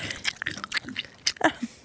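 Wet, sticky chewing of sparkling-mimosa-flavored gum right up against the microphone, a quick run of irregular smacks and clicks, with no talking over it.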